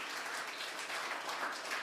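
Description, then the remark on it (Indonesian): A church audience applauds in praise to God, many hands clapping together in a dense, continuous wash of sound that holds at an even level throughout, with no voices breaking through. “Beri tepukan untuk Tuhan.”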